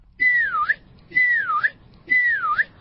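A child whistles three times in a row, each a short falling-then-rising whistled phrase about a second long, clear with brief pauses between.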